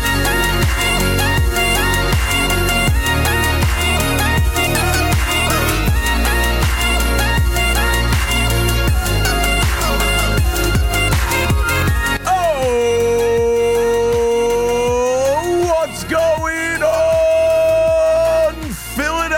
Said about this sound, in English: But first, Taylor, hit the music.